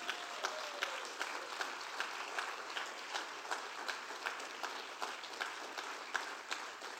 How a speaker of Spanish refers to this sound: Sea bendita la gloria de Dios esta mañana. ¿Puedo darle un aplauso a Cristo Jesús?